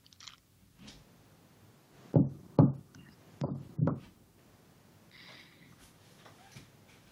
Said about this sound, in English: Okay, my dog keeps scratching at my door as though she wants to come in. And then the second I open the door, she does like a pounce and then just runs away from me.